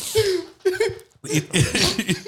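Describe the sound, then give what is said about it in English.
Several harsh coughs during the COVID period, in quick succession, with a brief pause in the middle before another run of rough, chesty coughing. “Hey, pardon all our coughing because the COVID time and our lungs were Nairat food.”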